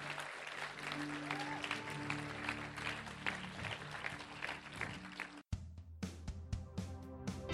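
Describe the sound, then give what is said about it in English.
A church audience applauds steadily, cheering on people who have just made a decision to become children of God. A dense wash of many overlapping claps sits over a faint sustained tone. The applause cuts out for an instant, then continues with sharper, more spaced claps. “Let's cheer on those people that have made that decision today.”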